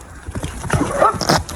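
A horse breaks wind twice in quick succession, two short, loud, sputtering blasts, the second one higher and hissier than the first.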